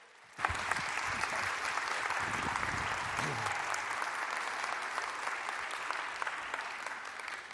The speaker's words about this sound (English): So let's give a huge, passionate round of applause for John Burns.